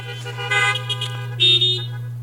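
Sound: car horns honking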